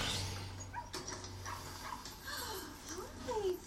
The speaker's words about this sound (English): Right, I don't like her now just because of a wee dog. Mm. I don't like that wee dog. It's a handbag dog.